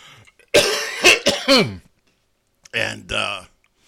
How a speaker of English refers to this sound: I just had a massive coughing fit. It was a combination of... It was a combination of Diet Mountain Dew and a...